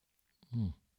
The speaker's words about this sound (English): Let me take a quick sip of tea here.